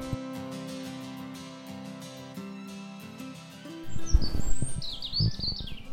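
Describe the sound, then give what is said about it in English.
A grey wagtail calls in a park with a quick run of sharp, high chirps in the second half, fairly clear over rustling background noise, after a few seconds of steady low humming tones. “That's a grey wagtail.”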